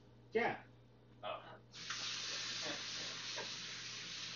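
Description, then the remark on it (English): A couple of brief voice sounds, then a steady, fairly loud rush of hot water pouring from a tap into a small bowl to thaw chicken, continuing without a break to the end. “Well, that takes a long time to thaw in hot water.”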